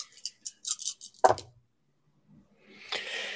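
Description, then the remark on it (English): Five dice rattle in a quick burst of light, irregular clicks, ending in a sharper clack as they land, rolled for drive and composure; after a short silence, a soft broad rustling noise rises. No one speaks. “Drive and composure. It's five dice for me.”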